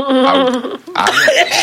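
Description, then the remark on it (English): A person forces out a loud, exaggerated cough: a drawn-out voiced hack, a brief pause, then a second raspy, throaty burst. It sounds like a deliberate, theatrical cough rather than a natural one. “That's when you cough in his face.”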